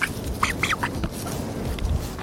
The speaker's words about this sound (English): I'm here with a bunch of ducks. Ducks, any thoughts?